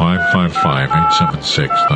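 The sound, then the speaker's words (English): Touch-tone telephone keys beep as a phone number is dialed to make a phone call, a quick sequence of about five dual-tone presses, some short and some held longer, over an energetic voice-like sound that continues underneath. “I'm allowed one phone call, am I not?”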